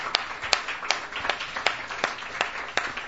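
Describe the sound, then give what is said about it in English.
An audience at Halbert's applauds the venue for its support of live music, with a steady wash of many overlapping hand claps, a few sharper claps popping out irregularly above the crackling texture for about three seconds, with no one speaking. “So there's always great music coming up at Halbert's, and I just want to say a big round of applause again to Halbert's for all of their support with live music.”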